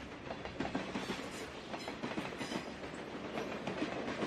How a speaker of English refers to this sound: That train would pass by.